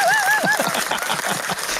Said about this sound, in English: Go on, get it going. Yeah, go on. Give us another clap.